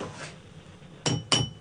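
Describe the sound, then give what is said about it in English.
Two sharp glassy clinks ring out in quick succession as a dirty glass is struck in place of a bell to greet a phone caller, a bright struck-glass tone with short resonant tails, fairly loud against quiet. “You got a very dirty glass, but hopefully that will suffice.”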